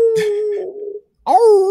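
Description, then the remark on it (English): A wolf howls in two loud calls: a long steady wail that trails off, then after a brief pause a second howl rising and falling in pitch. “It's a wolf.”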